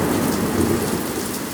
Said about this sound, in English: again on the front porch, again in a thunderstorm. The power is still on, but we'll see how long that lasts.